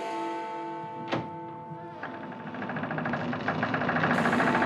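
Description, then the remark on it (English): A bell tolls in the distance, a sharp strike ringing out into long, sustained humming tones, followed by a rumbling, pulsing texture that grows steadily louder. “So now I guess you hear that bell tolling off there in the distance.”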